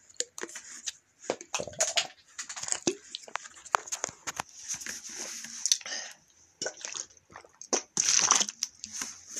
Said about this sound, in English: So I'm going to just finish this quick sip of whiskey. One moment, please.